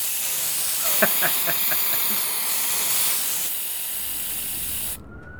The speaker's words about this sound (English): Look at that! That's a right spectacle, that is. Yes, the same message sprayed 3 times into the wall.